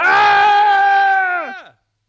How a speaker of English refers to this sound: I wonder why we're yelling every once in a while.